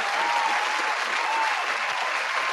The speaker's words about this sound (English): Round of applause, man. Put some respect.